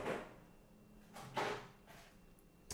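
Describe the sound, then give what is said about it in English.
A top freezer drawer slides open or shut as someone goes to get a bottle, with a few breathy scraping swooshes, the loudest in the middle, then a faint bump at the end, with no one talking. “It's in the freezer, lad. Top drawer.”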